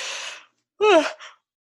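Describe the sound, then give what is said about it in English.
A loud yawn: a long breathy intake of air, a short pause, then a voiced, groaning exhale that slides downward in pitch and trails off with a small tail. “Lord, excuse me. yawn.”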